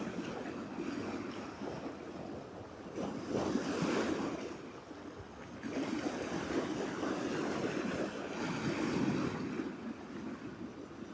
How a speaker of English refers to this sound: Just feel the waves washing over, cleansing us.